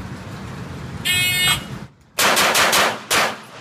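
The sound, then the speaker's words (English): Bursts of gunfire at a target during a final shooting run, four rounds to the body then one to the head: a short harsh buzzing volley, a brief pause, then a rapid string of loud cracking rounds ending in a final separate shot, over a low rumbling background. “And this is 4 rounds to the body, and then you got to fire 1 round to the head.”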